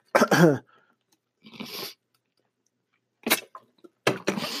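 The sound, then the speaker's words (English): Someone takes a swig of water: a handful of short, separate gulping and swallowing noises with breathy exhales between them, spread unevenly across a few seconds with quiet gaps and no talking. “Let me take a swig of water real quick.”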